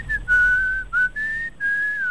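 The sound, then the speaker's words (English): A man whistles a slow, sustained melody of long held notes with brief breaks between phrases, clear with no one talking. “You will believe a man can whistle.”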